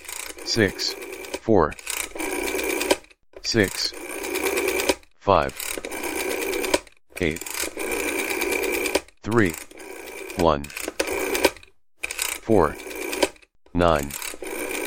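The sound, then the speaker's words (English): A rotary phone dial is turned again and again, each spin a whirring, clicking ratchet as it springs back, with short silent pauses between digits as the ten-digit live phone number of the radio station It's Your Radio is dialed. “Dialed on a rotary phone. Listen to it now.”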